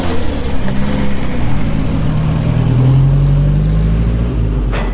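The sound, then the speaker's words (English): An early motor car engine drones loudly and steadily, its pitch climbing as the car picks up speed along a country lane in 1913, with no voices. “The motor car zoomed along the country lane.”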